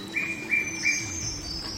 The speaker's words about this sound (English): Okay, headphones on. Here's a montage of birds that I recorded some years ago on Mount Lewis in the Carbine Tablelands of Queensland, Australia.